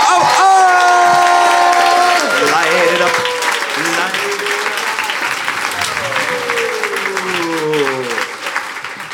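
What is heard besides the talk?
audience applause and cheering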